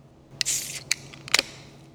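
A beer can being opened: a sharp click followed by a short, bright hiss of escaping gas, then a couple more light metallic clicks. No one speaks.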